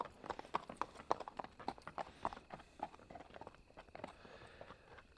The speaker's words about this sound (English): All right. Well, two men on horseback just rode past us, and they did kind of resemble old-timey cowboys, right?